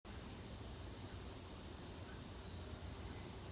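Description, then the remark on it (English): A steady, high-pitched cricket trill, a recording of crickets played over a loudspeaker inside a room to capture the echoes, plays continuously with a slightly hollow, reverberant quality over a faint low rumble. “took some recordings that he had of crickets and played them over a loudspeaker inside a room, so he could capture the echoes.”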